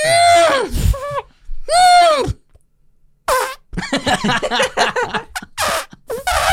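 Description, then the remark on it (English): A voice imitates a baby elephant with two long, wavering, trumpeting squeals that bend up and down in pitch, followed by a burst of rapid sputtering, squeaky noises. “But I think elk, they're making similar noises, although a little baby elephant's more like... It's more like...”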